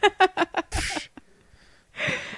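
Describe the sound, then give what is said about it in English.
A short run of voiced, laugh-like bursts leads into a harsh, breathy cough, then a brief quiet pause and a second rough cough. Both are fairly loud, with no talking. “Excuse me while I cough.”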